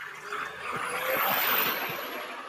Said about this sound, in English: Oh, let this truck pass. Let this truck pass, y'all. Let the truck pass. Let the truck pass.